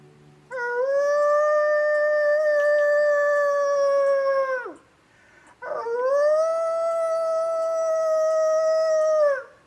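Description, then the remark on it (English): A person imitates a wolf, giving two long, steady howls, each about four seconds, that swoop up at the start and drop off at the end. Loud, with no talking. “But here's something I might do when I'm out there as far as a howl.”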